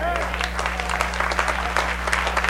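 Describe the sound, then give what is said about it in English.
An audience claps steadily during a sermon, a dense patter of many hands that holds through the whole stretch, with a brief voice near the start and a constant low hum beneath. “As long as the Bible said it, I don't need no claps. I like them though. Y'all keep doing it.”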